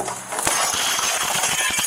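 A deputy sheriff smashes the window of a burning house: glass shatters loudly, a burst of breaking and crashing with scattered sharp clinks of falling shards continuing for a couple of seconds. No voices.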